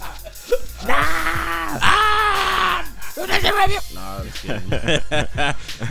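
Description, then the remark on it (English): A voice lets out two long, strained, loud battle yells back to back, imitating the fighting cry of the anime character Asta, followed by a burst of quick speech. “Yeah, you gonna get your Asta yell on?”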